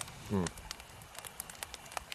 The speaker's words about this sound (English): Yeah, we're around the campfire. Why don't you talk shit about people some more around the campfire?